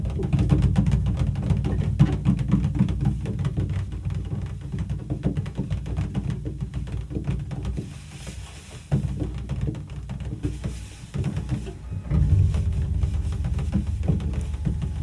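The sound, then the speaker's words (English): Heavy rain from a downpour drums steadily on the metal roof of a parked car, heard from inside the car: a dense, continuous patter of countless tiny hits with a deep low rumble underneath, easing slightly for a moment before surging back. “We sat in the car, letting the rain sound echo across the metal roof.”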